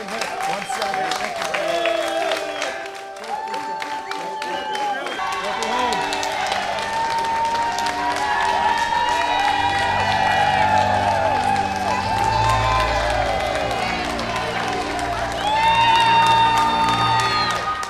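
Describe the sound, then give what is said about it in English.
A large crowd of hundreds of family, friends and Navy cadets applauds and cheers steadily in an echoing airport terminal, welcoming veterans home. Dense clapping continues throughout, mixed with shouts, chatter and a few sustained tones. “Hundreds of family, friends, Navy cadets fill the terminal with applause.”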